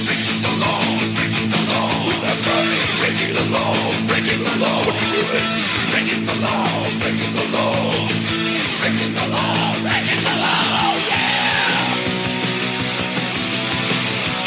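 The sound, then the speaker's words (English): Loud, chaotic screaming from tapes presented as lobsters screaming as they are boiled, shrill wavering cries rising and falling over and over on top of a dense, constant wall of noise, with no pauses. “If you think Ocasio-Cortez's live streams are hype, but you should hear these lobsters scream, dear God.”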